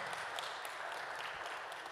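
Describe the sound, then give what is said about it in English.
A church audience claps steadily, a dense, even patter of many hands with no pauses, holding at a consistent moderate level throughout. “It's all right to applaud. You're in church, but you can applaud.”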